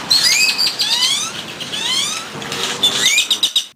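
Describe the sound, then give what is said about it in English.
A flock of grackles calling all at once, a dense, busy chorus of sliding whistles, squeaky chirps and rasping notes overlapping continuously, loud, with no voices. “They sound like a slide whistle, murmurs, clucks, chirps, and even weird robot noises.”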